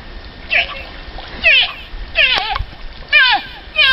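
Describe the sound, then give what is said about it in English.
Water splashes and sloshes steadily throughout, while an animal lets out a series of short, wavering calls about every second over the top. “I can hear the water, which might prime you in some direction.”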